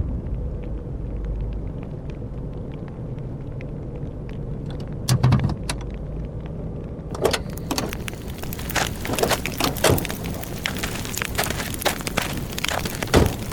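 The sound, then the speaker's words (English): A truck's low engine rumble drones steadily as it pulls over and parks by some trees in a parking lot, away from a fire, followed by a burst of clicks, rattles and crackling clatter once the vehicle settles. “Park by those trees, away from the fire.”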